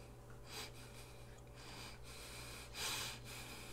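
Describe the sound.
Heavy, rasping breaths come in a series of rough, airy bursts, with a louder huffing exhale near the end, all over a faint steady low hum and with no talking.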